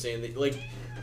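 A single short meow from Leo, a male pet cat, fairly clear, rising then falling in pitch, with a steady low electrical hum running underneath.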